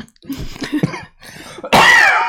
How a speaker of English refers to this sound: Now you can hear me coughing.